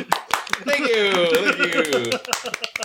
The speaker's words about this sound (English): Thank you. Thank you for recognizing my "I require applause" pose. I'm glad that we did a bunch of clapping since we used that to mark when we need to end the podcast.